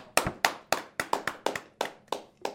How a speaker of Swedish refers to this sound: Jag vet inte vad vi applåderade egentligen åt, om det var din omtagningen eller om det var faktiskt att du är här.